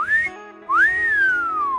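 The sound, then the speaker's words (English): A Walter's Wolf Whistle, a plastic toy dog blown through its tail, sounds twice in quick succession: a short rising tone, then a longer swoop that climbs and slowly falls, like a shrill wolf whistle. It is loud, with no talking. “It's a plastic dog where you stick the tail in your mouth and blow, and it creates a whistle.”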